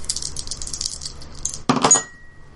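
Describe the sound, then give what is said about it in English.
A lot of dice rattle and tumble in a continuous clicking shake, then spill out with a sharp, bright clatter that quickly settles into quiet, rolling a 9. No one speaks. “Oh, that's a 9. You had a lot of dice.”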